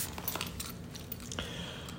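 Keys on a keychain with a breathalyzer attached jangle and clink in quick metallic bursts, then a steady high electronic tone starts and holds through the end.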